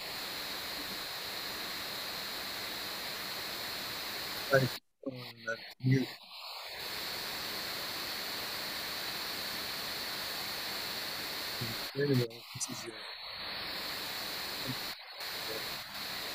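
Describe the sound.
A steady hiss of static fills an unmuted phone call line, interrupted by a couple of brief crackling dropouts with faint fragments of voice, then the hiss resumes and continues throughout.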